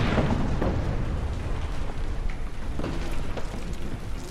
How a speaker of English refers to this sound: And then there's the explosion.